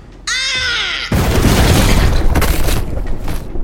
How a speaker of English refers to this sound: My revolvers were flush against her stomach before I'd even pulled the triggers.